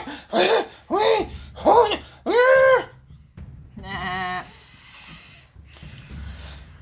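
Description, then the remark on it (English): A voice imitates a bloated female creature screaming in pain after a Firebolt spell hits her: four loud, strained, bleating wails in quick succession, then a harsh, buzzing groan that trails off into a faint, breathy rasp. “So she starts to bulge more as she becomes bloated, and now she's like screaming in pain, going.”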